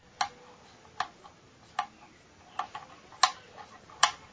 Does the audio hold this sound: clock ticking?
yes